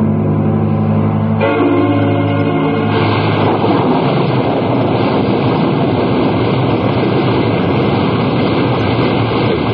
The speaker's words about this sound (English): No, let's stay. I love the wildness of the storm over the ocean. Yeah, it's nice. I think this one will blow over pretty soon.